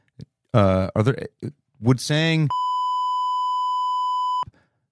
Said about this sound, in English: let me beep it out just so Jake has the beep in case he has to